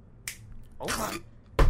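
Sharp finger snaps crack out alone, one early and a louder one at the end, with a softer, longer swishing burst in between. No one speaks.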